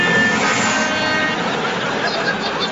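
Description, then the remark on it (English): An old steam train chugs past, a loud continuous hiss of steam carrying steady roaring hooter tones over it for a few seconds, with no voices. “Hooters roared and the steam engine hissed as the old train chugged by.”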